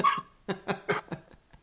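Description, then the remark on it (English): A young female dog gives a brief whine, then a quick run of five or six short, yappy barks, fairly quiet, with no one talking. “By the time that dog grows up, you will have written your second book.”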